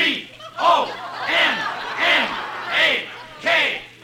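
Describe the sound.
A football stadium crowd cheers wildly after a field goal kicked from the 16-yard line in the last minutes of the game, the roar swelling in loud, rhythmic surges about six times, like a chant rising and falling, with many voices blending into a dense, continuous din.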